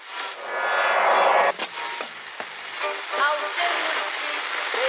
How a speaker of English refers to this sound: Whose phone is that? That's the second time it's gone off.